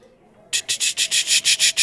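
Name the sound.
spinning prize wheel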